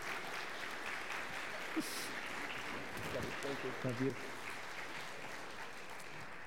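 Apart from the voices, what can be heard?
audience applause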